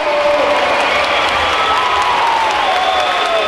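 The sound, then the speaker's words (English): A large indoor basketball crowd roars and cheers continuously, a dense, loud wash of voices with scattered whistles and shouts rising above it, filling a big echoing arena as UAB gains momentum in the game. “And having a crowd in the building making an effect here as they have seen UAB gain the momentum and they're trying to keep it whipped up.”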